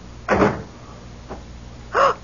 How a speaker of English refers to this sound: Close the door. What? Come in, close the door.